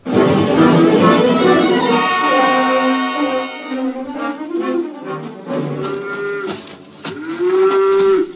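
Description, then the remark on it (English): A cow being milked on a farm moos loudly and repeatedly, long drawn-out lowing calls with rising and falling pitch, continuing over several seconds with no one talking. “Come out to give me a hand with my milking? No, thanks. Let go of that cow for a minute”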